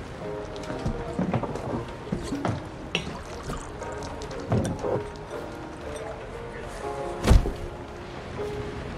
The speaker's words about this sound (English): Tell him to respect the storm next time.